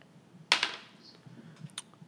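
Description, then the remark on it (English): Dice are rolled for a javelin attack, a sharp clatter as they strike the paper, two quick hits close together, then a couple of faint ticks as they settle and stop on the paper. “It kind of stopped on the paper.”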